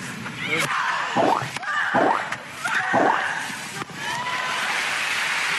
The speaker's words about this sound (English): I think they're just trying to like out-grunt each other. It's psychological, maybe.